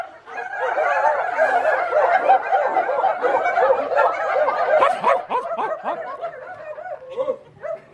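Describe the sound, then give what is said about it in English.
Several people yip and bark together in a lively, overlapping chorus, imitating excited puppy barks, loud, with scattered laughter mixed in. “Let's do puppy dogs.”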